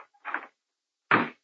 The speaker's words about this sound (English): Open a window. How do you guys breathe in here?